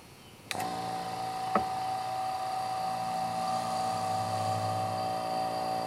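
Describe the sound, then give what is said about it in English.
A vacuum pump starts abruptly after a brief quiet moment, pumping the air out of a half-inch thick glass chamber holding a siren. It runs with a steady, buzzing mechanical drone. A sustained high tone rides on top, and there is a single sharp click partway through. “Okay, so it's hard to hear the siren over the sound of the pump, but what I'll do is once it's pumped out, I'll turn the pump off, and then I'll let the air back in.”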